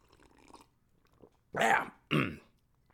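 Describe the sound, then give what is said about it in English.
Someone takes a drink of water: two loud gulping swallows in quick succession after a few faint, quiet mouth noises. “Quick sip of water, water break, balls.”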